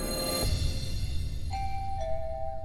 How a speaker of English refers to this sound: The doorbell rang.